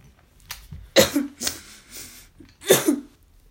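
A pair of sharp, breathy sneezes bursts out, with a quieter gasp-like breath between them and no talking.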